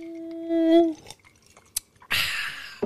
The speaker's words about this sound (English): So you're drinking for 2 seconds. I have 1 second to drink. One sip.